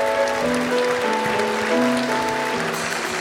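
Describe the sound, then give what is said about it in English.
A studio audience claps steadily and warmly for a few seconds, welcoming singer and actress Ruby Lewis on her first appearance on the show, while a bright musical tune plays underneath. “A warm welcome, if you would, Ruby Lewis.”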